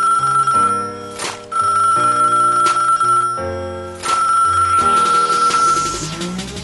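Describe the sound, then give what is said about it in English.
A telephone rings during an outgoing call with a loud, melodic ringtone, bright sustained electronic tones stepping through a repeating tune for several seconds, with no voices. “Make sure I have him on the phone line, you know, because time.”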